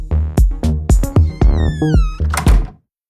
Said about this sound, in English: All of the high frequencies are bouncing around inside their space, but the bass frequencies pass right through the walls and into your ears. When your neighbor opens the door for pizza delivery, all those high frequencies can escape.